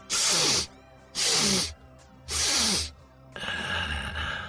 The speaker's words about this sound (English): lifted him to her face, put her nose to the fur behind his head, and inhaled deeply 3 times.